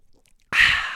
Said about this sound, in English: let me take a sip